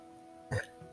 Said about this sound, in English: Excuse me, I burped.